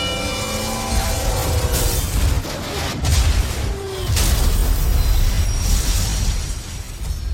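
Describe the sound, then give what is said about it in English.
A heavy million-pound freight train rumbles loudly at a crossing as a violent crash erupts, with sharp booming impacts and crunching, shattering debris over a continuous low roar. “on the tracks, we have Bull, a million-pound freight train that takes a mile to stop”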